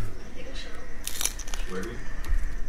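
Someone chews pizza right into the microphone, producing irregular wet smacks and crackly clicks, with a brief louder burst of mouth noise partway through over a low rumble.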